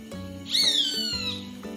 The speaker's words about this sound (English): Aha! That's a tune I have danced to. It's the zippy zap zap of the Amur Falcon.